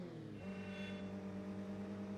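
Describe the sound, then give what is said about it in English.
A racing video game car engine drones loudly and steadily, its pitch jumping up briefly as it revs and then holding a constant buzzing hum, with no voices over it. “It's handling like a boat. Like it's just like sluggish around turns and like driving a Lincoln”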